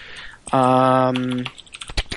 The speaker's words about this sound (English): That's my mechanical keyboard. I hear that. Yeah. That sounds like newsy. Like, he sounds like a newsy, you know what I mean? Like, you know he's getting business done with the sound of that click-clack.